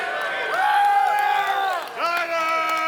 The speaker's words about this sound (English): So I need you to scream and holler like you're a Niner fan. Come on, holler for Jesus.